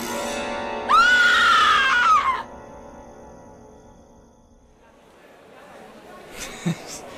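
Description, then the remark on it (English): In a dorm, a person who saw a giant yellow eye staring from under the door lets out a loud, high-pitched scream of fright for about a second, rising and falling in pitch, then it cuts off into quiet background noise with a faint bump near the end. “You would have screamed too if you saw a giant fucking yellow eye staring at you from under the door.”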